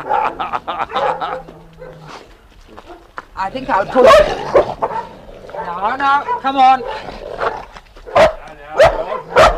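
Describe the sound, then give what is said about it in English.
Two dogs growl and bark in a scuffling, not very serious fight, with several sharp barks breaking through while people speak over the noise. “Ross and Charlie are rather apt to argue against each other. They growl. Sometimes they fight.”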